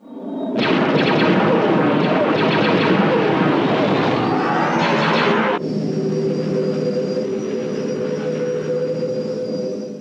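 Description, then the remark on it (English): A loud, dense sci-fi X-Wing starfighter trench dive roars in with rumbling engines and crackling laser fire, then cuts abruptly to a steady humming engine drone with a high whine, no voices. “X-Wing trench dive.”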